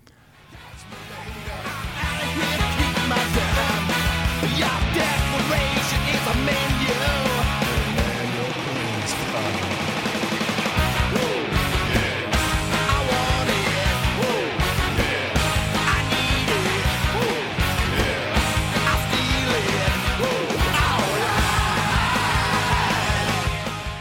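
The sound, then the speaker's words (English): A loud, dense rock song recorded by a band plays after a quick fade-in, with pounding drums, heavy bass and distorted guitars driving steadily throughout, plus what sounds like shouted vocals. “so that is … from …, from the album …”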